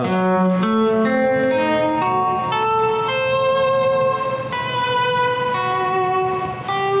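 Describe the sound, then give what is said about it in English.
Electric guitar, with its volume and tone knobs used to swell each note, playing smooth, sustained violin-like tones, a slow melodic line gliding through several notes at a steady, fairly strong level, with no one talking. “You can get kind of a violin sound.”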